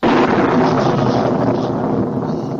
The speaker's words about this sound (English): That was not the typical lightning crash. Lightning crash.